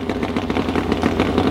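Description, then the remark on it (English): Black Betty, a double-engine Ironhead drag motorcycle built by Anthony Porter and campaigned by Ray Center, rumbles loudly and steadily, its idle a rapid, throbbing clatter of low pulses with no voices. “And he'll be back again this year riding Black Betty, which is a double engine Ironhead.”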